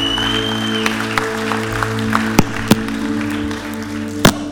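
A church crowd applauds an evening message in a steady, dense patter of clapping, with a few sharper, louder claps standing out, over a low sustained musical hum.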